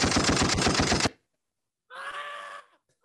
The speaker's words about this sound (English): Gunshots, man. Gunshots. Get him out of here.